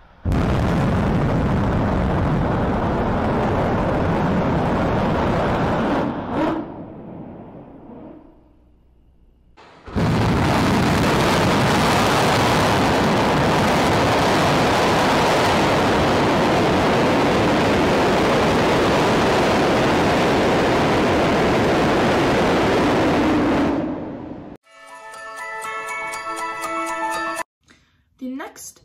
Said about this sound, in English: Listen to these incredible sounds of booster and ship static firing.